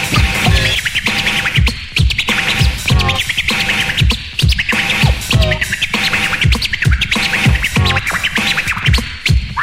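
Loud, rapid turntable chirp scratches made by a DJ on a record cut rhythmically over a driving beat, the short pitched swipes repeating steadily throughout with no voices.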